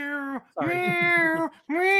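A cat meows three times in quick succession: a short call, a longer drawn-out meow with a rough, gravelly edge, then another short one. The meows are loud, clear and tonal, with no talking.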